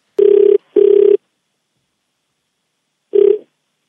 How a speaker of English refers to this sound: All right, let's dial the number, please.